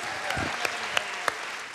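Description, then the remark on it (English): An audience gives a round of applause, a steady wash of many hands clapping at an even level, with a few sharper individual claps popping out above the crowd. “But can you guys just give these girls one more round of applause?”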